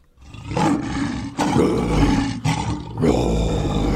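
A lion roars loudly, a rough, rumbling growl that swells in several surging bursts over a few seconds with no talking.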